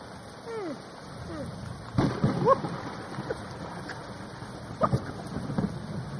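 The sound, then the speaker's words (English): A recorded thunderstorm soundscape from a sound machine: a steady wash of rain-like hiss with splashy bursts and gusts, moderately loud and continuous, with no clear deep thunder rumble standing out. “All right, let's go to thunderstorm. I mean, true. Press the thunderstorm.”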